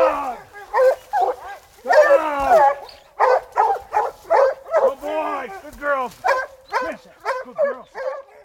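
Hunting hounds bark and yip excitedly in quick, overlapping bursts, loud, a steady stream of sharp, wavering cries over about eight seconds with no one talking.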